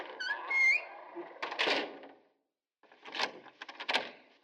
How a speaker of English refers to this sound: So I'm going to shut the door, and you all have fun.